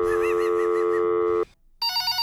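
A telephone rings loudly with a steady electronic trill, cuts off briefly, then starts a second ring. Nobody speaks.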